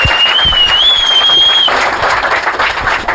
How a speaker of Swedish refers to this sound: En applåd